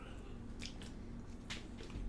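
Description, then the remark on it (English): Wet, squishy chewing from someone eating chicken wings, with a few short smacking bites over a steady low background hum and no talking. “I'm like, I'm literally eating chicken wings”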